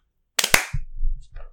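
two people clapping hands

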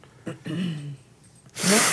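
sneeze

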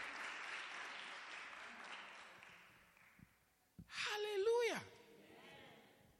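children clapping

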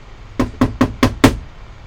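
knocking on a door

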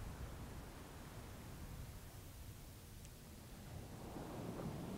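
ocean waves

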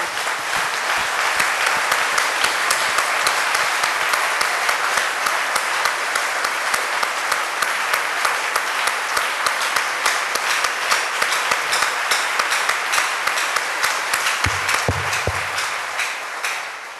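audience applauding

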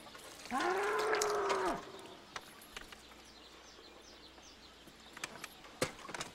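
bull mooing

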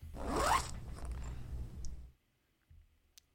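zipper being zipped up

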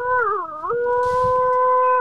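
dog howling

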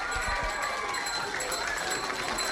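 children applauding and cheering

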